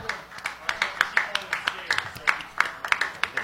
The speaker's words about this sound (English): And thank you to our sponsor, Hookah House, the Hookah Lounge that you love. Big round of applause for Hookah House.